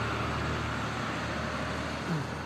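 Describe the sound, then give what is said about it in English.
A loud, steady rumble of a big truck going by, a broad roaring wash of engine and road noise with a low hum underneath, no voices. “Sorry, big truck.”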